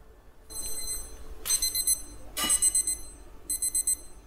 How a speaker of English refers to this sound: Okay, that's the timer.